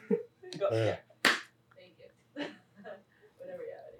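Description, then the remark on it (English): One sharp, loud clap from an audience cracks out at once, surrounded by murmuring and raised voices from the crowd before and after. “Somebody give me a big clap. Just one.”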